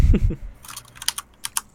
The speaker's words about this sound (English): What is that? Yeah, that's me typing angrily.